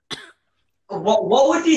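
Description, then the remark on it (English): A single sharp cough, from a piece of banana going down the wrong way, bursts out and stops; after a brief silence, a person starts talking. “Did you hear that coughing? You made the banana go down the wrong tube.”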